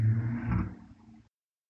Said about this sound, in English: You heard that, the motorcycle.